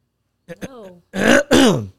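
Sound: throat clearing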